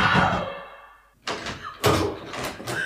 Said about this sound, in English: I was banging at the door.